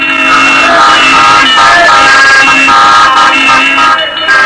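Loud, dense street traffic at the intersection of Market, Pine, and Harvard Streets, with several car horns honking at once, overlapping blasts sounding continuously for a few seconds.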